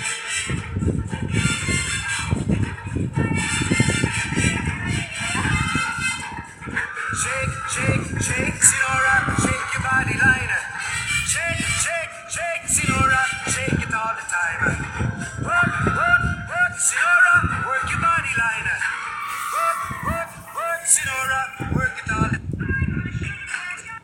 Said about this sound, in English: Why he sound like that? I wish this was edited. So the dog actually sounds like that.